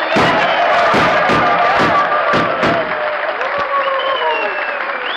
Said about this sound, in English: how's that for an ovation, Jackson? Gunshots and everything.